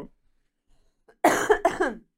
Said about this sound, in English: I got a cold. Sorry, I'm coughing, everyone.